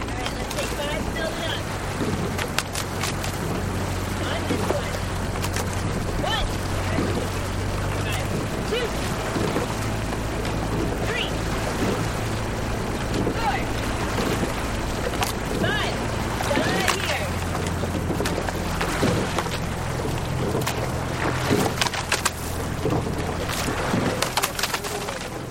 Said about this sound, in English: captured the sounds of these long and pointed shell boats racing up and down the banks of the Charles River.